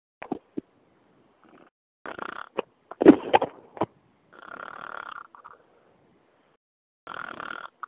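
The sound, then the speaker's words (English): Snoring in rough, rasping bursts, several breaths a few seconds apart with brief snorts between, moderately loud, with no one talking, heard over a conference phone line. “Somebody's snoring.”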